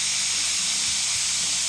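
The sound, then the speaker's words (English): A pressure cooker vents steam after 20 minutes of cooking, the pressure released by holding down a button, in a steady, loud, high-pitched hiss that holds constant throughout, with a faint low rumble underneath and no talking. “Our 20 minutes is up on our pressure cooker, so I'm going to release the steam and take it out of the pressure.”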